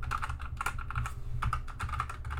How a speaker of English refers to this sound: One, I have a mechanical keyboard. I don't know if you guys will be able to hear this.